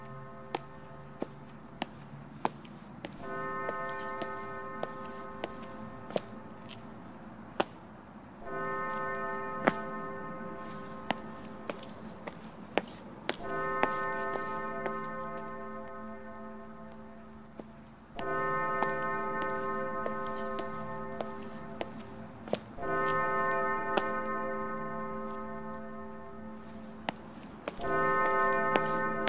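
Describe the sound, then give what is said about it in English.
A church bell gongs slowly and steadily, about every four to five seconds, each strike ringing out in a sustained, resonant tone, while sharp ticking clicks sound throughout. “A church. First gong. Where is there a church? Second gong.”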